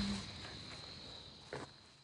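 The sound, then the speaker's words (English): Soft, irregular footsteps crunch along outdoors as someone walks around Rock Creek Park, with one louder step toward the end, over a steady high-pitched insect drone. No one speaks. “you're walking around Rock Creek Park, hearing him talk about this.”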